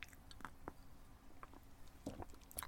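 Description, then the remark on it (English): Someone takes a quiet sip of tea, with a few short wet slurping and swallowing sounds scattered over a couple of seconds. No one speaks. “Can I have a slurp of tea?”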